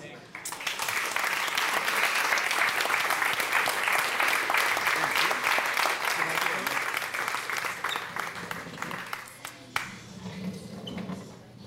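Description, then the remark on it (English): Sustained audience applause, a dense crackle of many hands clapping at steady volume for about ten seconds before thinning out and fading near the end. “Oh, yeah, rapturous applause.”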